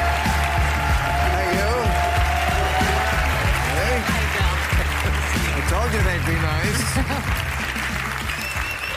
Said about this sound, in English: Say, I'm glad you got a warm round of applause.